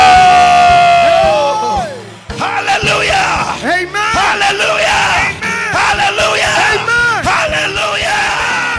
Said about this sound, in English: Can I get somebody to say amen? Can you say a louder amen? Can you say amen and clap your hands and celebrate Jesus? Whoa.